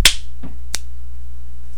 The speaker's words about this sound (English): Just clap 1.5 times. How do you clap half a clap? You snap. Isn't it obvious?